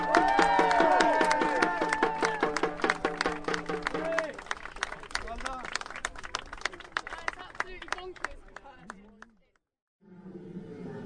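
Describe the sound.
An audience applauds with dense, steady clapping and some cheering voices at first, then the applause thins out to scattered claps and fades to a brief silence before other sound resumes.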